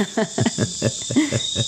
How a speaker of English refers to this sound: You can hear the jungle noises around us. There's birds and crickets and just like mosquitoes.